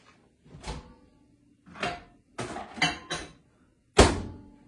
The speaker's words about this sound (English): All right, so I'm gonna put it in the microwave here. More Chef Boyardee.